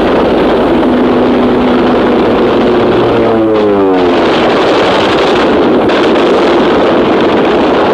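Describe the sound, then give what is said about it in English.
American dive bombers sent from an aircraft carrier roar in on an attack on a surfacing submarine, an engine's pitch sweeping sharply as one plane passes, all buried in a loud, continuous wash of harsh noise and rattling gunfire. “Guns blazing, the planes pounce upon the submarine before it can submerge.”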